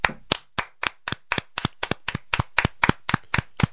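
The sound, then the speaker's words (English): A steady run of sharp hand claps, roughly fourteen in under four seconds, keeping a quick, even rhythm with no voices over them. “They all deserve a clap as well.”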